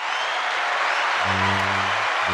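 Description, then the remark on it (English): Dense, steady applause fills the whole moment like a clapping crowd, with a low humming tone rising underneath partway through and briefly cutting out near the end. “But yeah, round of applause for the man.”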